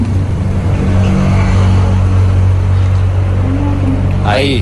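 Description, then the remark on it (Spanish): A car engine drones loudly and steadily, then revs sharply upward in a quick rising whine right at the end. “No, es cuando se oye el ruido del coche, cuando se oye el ruido del coche.”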